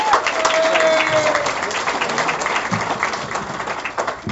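Dense, steady audience applause at the Wisecrackers comedy club welcoming the evening's MC, a continuous wash of many hands clapping at an even loudness, with a brief whistle-like tone near the start and crowd noise mixed in.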